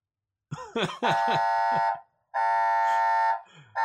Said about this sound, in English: Turn off the blasted sirens, Beth. They keep going.